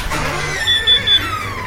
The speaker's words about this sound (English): Just open the garage door. Don't worry about me. I will. I'll go and hit the button that makes the garage door open.